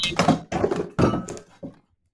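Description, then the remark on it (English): A cat crashes into a computer setup with a run of four heavy, dull thuds and knocks over about two seconds. The last bump is softer, then everything goes quiet. “My cat just did a full-on full-on Superman dive into the computer.”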